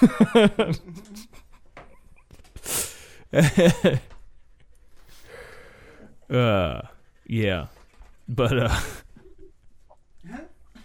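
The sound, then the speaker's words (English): A dog pants hard in quick breathy bursts while trying to hump a person, broken by short whiny, rising vocal yelps, with brief quiet gaps between the bouts. “Going back, man, the dog just never stops trying to hump”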